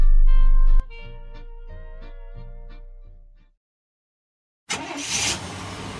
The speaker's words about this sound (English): There goes Pam Yonke across Wisconsin in her suburban truck.